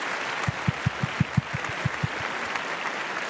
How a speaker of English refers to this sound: And we got to give you the round of applause.